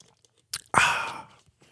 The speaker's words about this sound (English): Pardon me. Get a sip of water here.